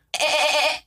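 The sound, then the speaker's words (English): A person imitates a goat, letting out a single loud, wavering bleat that lasts under a second, with no other sound around it. “Did you guys know I can do a really good goat sound, actually?”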